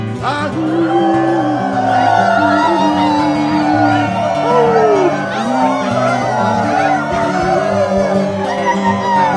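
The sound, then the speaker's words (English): A group of people howl and yip together in imitation of a coyote chorus, overlapping rising and falling wails and whoops that build into a loud, sustained cacophony. “Now that's truly a cacophony of coyotes.”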